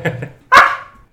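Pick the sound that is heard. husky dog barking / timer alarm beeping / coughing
husky dog barking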